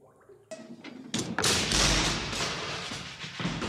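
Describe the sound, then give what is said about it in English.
A man angrily kicks the bars of a cage holding a large, cowering figure: a few heavy thuds land in quick succession, followed by a sustained loud metallic rattling and clanging of the shaking bars, with no voices. “Valdemar kicks the bars angrily.”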